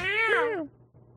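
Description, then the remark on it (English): A single voiced meow imitation by a person, loud, with a rising-then-falling pitch lasting about half a second before trailing into quiet. “I'll have all the cats in. Meow.”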